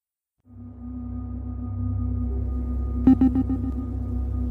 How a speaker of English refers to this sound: My eyes are closed. There's a humming sound and an airy sound, like air conditioning doing its job. Everything feels mechanical, artificial.